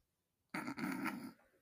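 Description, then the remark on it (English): A single throaty swallow of saliva, a gulping, slightly rasping noise lasting under a second with a brief catch partway through, heard alone after a moment of quiet. “You just swallowed your saliva.”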